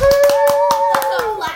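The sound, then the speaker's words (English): Several people clap their hands in a loose, uneven burst of about eight quick claps, while a high sustained voice-like whoop glides slowly downward over the top. “Let's all clap.”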